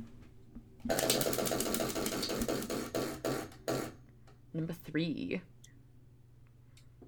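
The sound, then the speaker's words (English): A question wheel is spun, giving a rapid run of sharp clicks that gradually slow and stop, followed by a voice speaking briefly. “But on that note, we should spin for our next question.”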